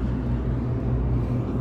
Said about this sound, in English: Here comes a waste management truck.